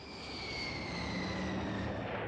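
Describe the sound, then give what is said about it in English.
Jack Lynch's jet airliner rumbles steadily as it taxis to a stop in front of the terminal at Dublin Airport, its engines giving a broad roar topped by a high, thin turbine whine that drifts slightly lower. “That was the question that must have been in Jack Lynch's mind as his plane taxied to a stop in front of the terminal.”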